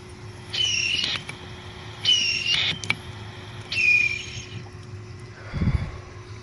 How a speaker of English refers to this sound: That's the whistle when I take the carb cap off the top of my rig here, the nail, the E-nail. That's what we get. We get a little whistle.